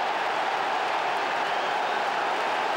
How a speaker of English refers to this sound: Manager leads the applause. Top corner.